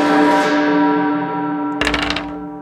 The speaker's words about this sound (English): Okay, you hear a loud bell. Or does only it hear the bell?